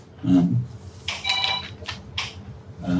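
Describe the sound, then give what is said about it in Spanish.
A mobile phone rings with an electronic ringtone: a bright, tonal chirp followed by a few shorter beeping bursts, moderately loud against low background rumble. “Is it possible that we turn off the phones?”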